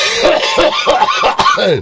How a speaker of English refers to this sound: You coughed the image right out.